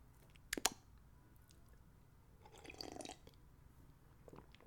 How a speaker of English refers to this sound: Quick sip of water, folks. Don't mind me, boss.